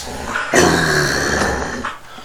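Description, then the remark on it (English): A dog named Sadie growls, a low rumbling snarl that swells suddenly and holds steady for over a second before trailing off, with no one talking. “So, that was Sadie. Sadie agrees. She had pretty little puppies.”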